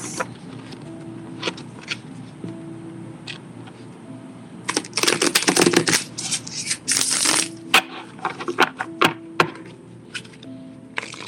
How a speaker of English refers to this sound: So let's just shuffle these cards.